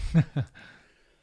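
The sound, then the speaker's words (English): Two quick coughs in rapid succession, each a short sharp burst, followed by a brief fading breathy tail and then quiet. “To cough. Edit that out.”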